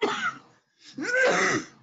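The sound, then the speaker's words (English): A woman stifles two short, muffled cough bursts while holding up a finger, held back with a brief gap between them and no talking. “She stifles a cough while holding up a finger.”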